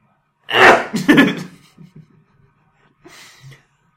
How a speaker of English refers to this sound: I've never seen anyone sneeze like that. You're like barking into your arm. Everybody sneezes weird. You sneeze like Zoolander.